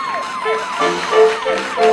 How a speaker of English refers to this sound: Well, I guess we're meditating to the sound of the fire truck instead.